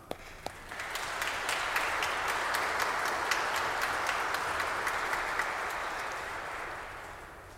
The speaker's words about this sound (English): And thank you, faithful servant, for the work. Give it an applause.